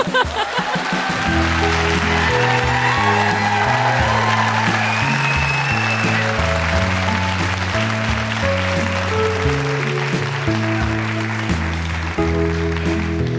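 A show audience applauds and cheers steadily for a guest's mother for several seconds, the clapping dense and fairly loud, while a thumping bass-heavy music beat plays underneath throughout.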